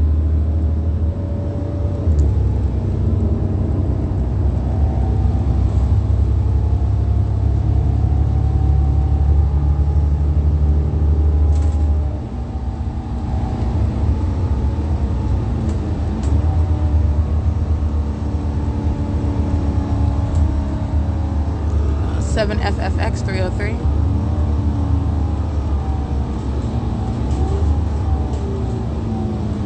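Steady, loud low engine rumble from inside traffic, with a Ryder rental truck passing partway through. No one speaks.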